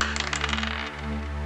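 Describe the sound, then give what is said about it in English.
Dice clatter in a quick burst of light, hard clicks lasting under a second, fairly loud, followed by a low steady hum with no talking. The roll decides a 50-50 chance of finding a flint, and the result is 27. “What are the chances? 50-50? I'll go with that. Here's the roll.”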